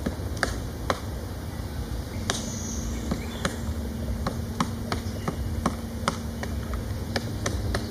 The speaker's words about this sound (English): Okay, I think this is a great time to share with everyone the sounds of a pileated woodpecker excavating its own cavity.